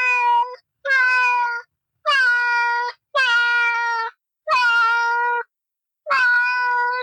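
A cat meows six times in a row, loud, each call drawn out and tonal with short pauses between, and no voices or other sounds around it.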